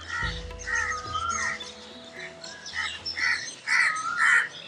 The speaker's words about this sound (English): I'm not going to say anything for about 30 seconds, so we can hear just some of the birds in the back. Just record them, if you don't mind.